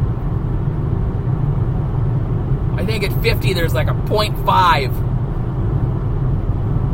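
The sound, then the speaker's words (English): Steady low road rumble fills the inside of a moving car throughout, a constant droning hum with a man speaking briefly over it partway through. “I think I'm trying, obviously I'm in the car, I'm not looking at the screen right now.”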